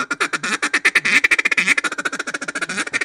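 A duck call blown, rattling off a fast, steady run of sharp, raspy drag quacks that surge loud in the middle before easing into quicker, evenly spaced bursts, with no talking.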